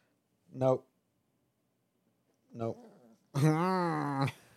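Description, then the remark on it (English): An excited, energetic little puppy growls and whimpers while trying to get away: two short, sharp vocal bursts with pauses between, then a longer, wavering whine. No one speaks. “Dog wilding out, bro.”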